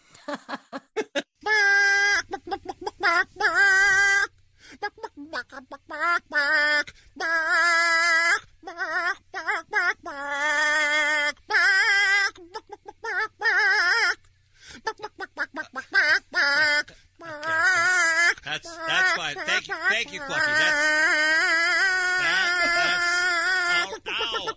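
A squawky, clucking chicken-like voice carries the melody of a rock song in a long run of rhythmic, tonal bursts with brief gaps, loud, like a song performed entirely in bird clucks, played in a contest to give away concert tickets.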